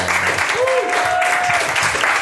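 A crowd applauds steadily, a dense wash of clapping that holds at an even loudness throughout, with a few faint tonal whistles or cheers rising above it.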